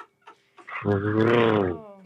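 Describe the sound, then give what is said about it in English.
A person attempts a Spanish rolled R that comes out as a rough, guttural growl lasting about a second, fairly loud, preceded by a few short breathy sounds. “Sound like I'm growling.”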